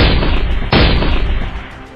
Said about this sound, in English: The British gun swung round and began firing at the new Italian cruiser.